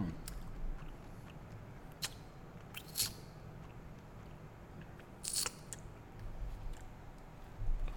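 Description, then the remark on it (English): Crunching as someone chews crunchy honey cinnamon almonds in a taste test, with a few sharp, irregular crunches standing out over quieter mouth sounds and low background noise, no talking. “First taste test of the first two nuts.”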